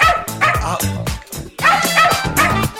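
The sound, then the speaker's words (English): A six-legged dog nicknamed Ariel barks and yips repeatedly in quick succession, loud, with sharp high-pitched cries running almost continuously and barely any pause between them. “So it's absolutely true, if you read it in Sky News, they've nicknamed the dog Ariel.”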